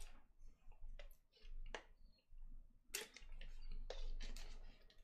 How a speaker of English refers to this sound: Well, let me drink some miracle water real quick.